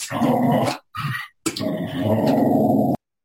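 A dog growls in three loud bursts, a long rumbling snarl, a short one, then a longer growl blending into whining, whimpering tones before cutting off.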